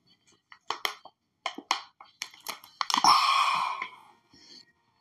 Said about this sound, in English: Hang on, I need a drink. Cheers, guys. Happy 2023. Give me a sec.